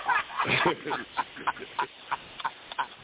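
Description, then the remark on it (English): A crackly, sizzling background noise like food frying in oil, with irregular pops and bursts over a muffled, low-quality line, and a voice briefly audible at the start. “Is somebody skin frying chicken or something? Somebody background real fucked up.”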